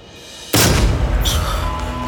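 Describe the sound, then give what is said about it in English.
A timed breaching charge detonates with a sudden, loud blast, then a heavy low rumble and crackling debris carry on for over a second. No one speaks. “All right, the charge is set. Everyone get back.”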